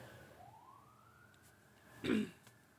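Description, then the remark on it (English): A faint emergency siren wails in a slow, steady glide in the background, and a sharp cough near the end briefly cuts through. “Sweet Jesus, we've had a lot of sirens today.”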